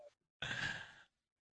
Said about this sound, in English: Oh. That's the baby snoring. Love it.